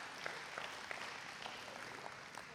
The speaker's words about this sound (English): Come on, that's good. Clap, clap.